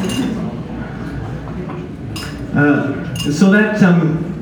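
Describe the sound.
A few bright clinks of glass ring out amid noisy clatter, with muffled voices rising toward the end.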